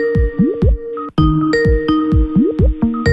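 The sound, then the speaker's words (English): A synthetic electronic ringing tone from an outgoing internet call repeats steadily and goes unanswered, with bright sustained tones and quick bouncy pitched blips. It is loud, and nobody speaks. “Let's see if Mike answers the phone.”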